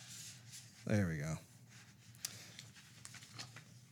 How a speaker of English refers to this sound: let's see if I can try and get this to not fall apart on me. Come on, paper, work with me.